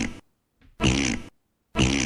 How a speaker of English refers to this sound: Dinosaurs? I could just play this all day long.